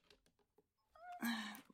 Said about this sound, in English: Sergeant Mozzarella is typing a report. She isn't good at typing. It's taking a while.